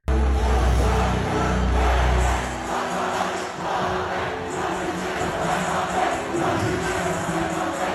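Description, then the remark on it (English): A large festival crowd roars and cheers at a live concert as the performer plays a song, recorded from backstage by a crew member, a loud, dense wall of noise that stays steady throughout, with deep booming bass underneath during the first couple of seconds. “If I could show the thing on it, the crowd's going. Now I can hear it.”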